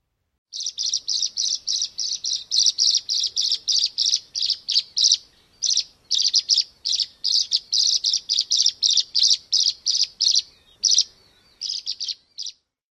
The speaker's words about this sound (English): The tree swallow calls are the same chirps and gurgles that make up their song. It sounds like a high, liquid chirping or twittering.